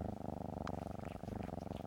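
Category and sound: animal, cat purring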